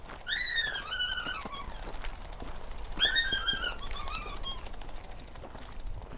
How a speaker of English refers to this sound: That little bird of hers flew around my head as I walked over to her.